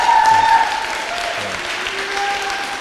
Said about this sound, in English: if we can just give a round of applause